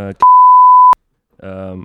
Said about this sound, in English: That's your name, actually. The proper name. Yeah, it's going to beep that out.